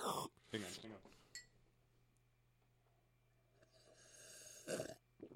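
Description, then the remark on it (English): A voice imitates someone sipping coffee with a few loud, breathy slurping bursts at the start, a quiet low hum in between, and another slurp near the end. “Do a sound effect of him sipping his coffee.”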